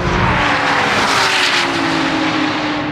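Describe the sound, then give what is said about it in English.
A Porsche GT3 RS sports car engine roars at high revs for the whole moment, loud, its steady droning tone laid over heavy wind and road rush as the car drives fast on a track on Cup 2 tires. “TestDrive: Porsche GT3 RS”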